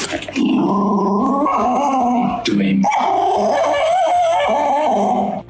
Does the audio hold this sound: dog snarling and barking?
yes